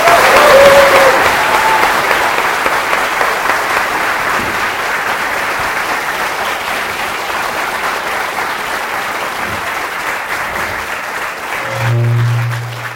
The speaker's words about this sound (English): You guys have a nice loud clap. That's nice.